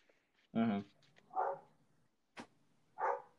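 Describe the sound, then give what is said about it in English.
A dog barks in a short burst of three or four sharp yaps spread over a few seconds, moderately loud, with a brief click between them. “Why is my dog barking?”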